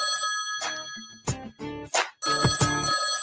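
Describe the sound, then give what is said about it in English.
A phone rings for an incoming call with a bright electronic ringtone, a steady high tone under a series of loud, rhythmic pulses. No one speaks. “He called again.”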